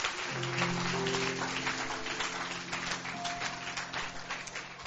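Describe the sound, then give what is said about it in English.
A church audience claps unto the Lord during a sermon, steadily for several seconds, a dense patter of many hands at even loudness, with sustained low keyboard notes held underneath. “I thought you would clap unto the Lord.”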